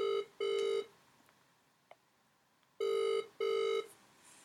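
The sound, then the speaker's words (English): A phone line ringing out on an outgoing call to Adrian Hug, the fines master: two cycles of the familiar double burst, each a steady mid-pitched buzzy tone, separated by a quiet pause, with no voices. “We're going to be giving Adrian Hug, our fines master, a call right now, and we're going to get him to give us a little rundown of how the week went on a social front.”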